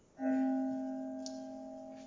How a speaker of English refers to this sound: I'm going to ask beloved Jody to ring the bell